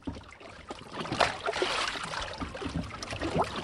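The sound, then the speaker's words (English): Gentle water laps and sloshes against the hull of a small boat tied to a yellow buoy on Lake Champlain, Vermont, in mid-afternoon haze over dark green water, with soft splashes and gurgles coming and going, steady and fairly quiet, with no voices. “a haze floats over the dark green water as dive master Doug Jones ties his boat to a yellow buoy”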